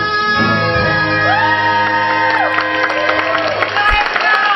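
A mother from New Jersey in the audience screams and cheers loudly with long, rising and falling shrieks after her daughter sings a song, over a dense background of a crowd cheering and clapping.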